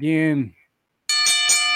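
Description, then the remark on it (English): A brief vocal sound, then after a short silence a loud, bright metallic bell rings out with a few rapid strikes in quick succession: a wrestling ring bell sound effect signaling a match. “Now it's time to give the last match, which is some Smark predictions. The bell done rang.”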